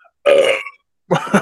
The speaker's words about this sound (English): That's when you know it's good, when you get that burp right on the first sip.